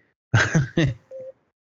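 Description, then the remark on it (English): A few loud, brief noisy bursts, then a single short, steady mid-pitched electronic beep that sounds on its own. “I just heard a beep.”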